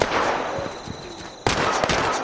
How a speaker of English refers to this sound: We got some stealth boys. That should help. More gunfire. Oh, laser beams.